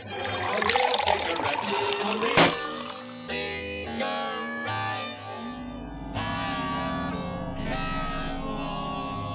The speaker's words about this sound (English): Hang on, let me just pour this jug of water onto the radio.